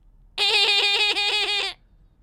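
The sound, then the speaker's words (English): A person imitates a dolphin with a single loud, high-pitched, wavering squeal that chatters rapidly for over a second and then cuts off, with no talking over it. “I can do an impression of a dolphin.”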